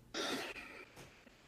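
A single harsh, breathy cough bursts out, followed by a couple of softer rasping coughs trailing off, close to the microphone with no talking.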